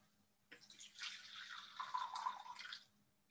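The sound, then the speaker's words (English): Liquid is poured into a cup in one steady stream of about two and a half seconds, a splashy trickle whose ringing tone shifts as it fills, with no voices. “He poured it.”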